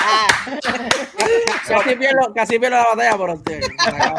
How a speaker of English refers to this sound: Everybody, round of applause for my man.